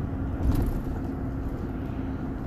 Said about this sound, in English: I've got my 8-cylinder, 5.7 liter, 8-cylinder fucking hemispheric engine roaring. You hear that? Woof. Sucking down that fuel, combusting in those chambers, baby.